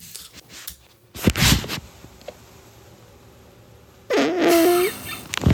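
A short, high-pitched fart with a wavering, squeaky tone lasts under a second, preceded earlier by a brief burst of noise. No one speaks.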